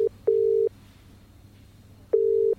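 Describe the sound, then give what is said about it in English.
A telephone ringing tone heard down the line: a steady mid-pitched double burst, brief pause, then another burst after about two seconds of quiet, over a faint low hum. “I'm calling Rod.”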